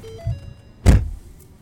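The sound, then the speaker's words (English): A single solid car door slam, fairly loud, with a dull thud and a short rustle of movement just before it as a man gets back into the car, stopped in front of a house with a chain link fence on a street in North Miami, then quiet interior hum. “hops back into the car after talking to John's girlfriend”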